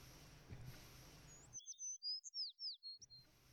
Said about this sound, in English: There's a huge amount of cheating in the Vinkensport finch singing. Or cheeping.